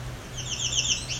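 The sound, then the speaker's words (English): An American Redstart gives a quick run of sharp, high ticking call notes, clear, over a low steady background hum. “That one's ticking at me.”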